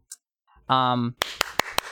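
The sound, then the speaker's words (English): A brief voiced sound, then a small group doing coordinated clapping in unison: four sharp, evenly spaced claps, fairly loud, over a low noisy background. “Wait, we need to do coordinated clapping.”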